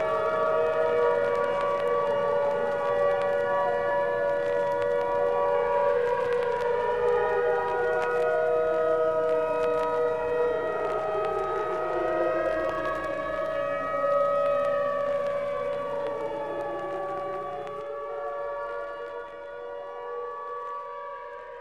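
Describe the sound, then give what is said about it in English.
A distant fire siren, perched high atop a red brick engine house, wails steadily, its layered tones sweeping slowly up and down in overlapping waves for the whole stretch, easing slightly toward the end with no voices present. “Walking home from the supermarket, Nye hears the distant song of the fire siren.”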